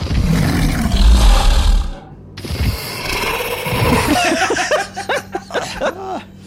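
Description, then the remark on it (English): A deep, loud monstrous roar rumbles for about two seconds, followed after a brief gap by a run of snarling growls and yelps that rise and fall in pitch, from three werewolves encircling and approaching. “And with your dark vision, you can see that there are three werewolves beginning to encircle you and come after you.”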